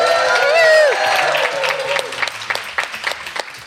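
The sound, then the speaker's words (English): A live audience at the Sexy Marriage Radio Getaway event cheers and whoops loudly at first in greeting, then breaks into scattered clapping that thins out over a few seconds, with voices calling out amid the applause. “Welcome back to another episode of Sexy Marriage Radio, coming to you live again from the Sexy Marriage Radio Getaway. Say hello, everybody.”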